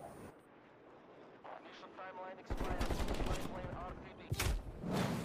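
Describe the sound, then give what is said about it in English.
A video game sentry turret opens up with loud, rapid automatic fire at an enemy behind the player, a dense stream of shots that keeps going to the end, with voices and game sounds mixed in. “My own sentry turret just killed me trying to shoot an enemy behind me.”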